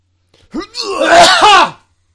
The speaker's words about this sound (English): I'm about to warn you. I'm about to sneeze.